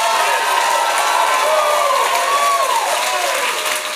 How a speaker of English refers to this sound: But I said, clap your hand in to give God glory. So let's try it again. Clap your hands and give God glory.